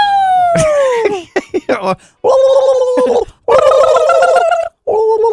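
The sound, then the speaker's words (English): A person does a loud, close-up turkey gobble impression: a sliding, descending call, some choppy bursts, then several longer rattling, gargly gobbles separated by brief pauses. “Today, we're going to do chicken / turkey impressions.”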